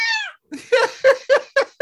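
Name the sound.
cat meowing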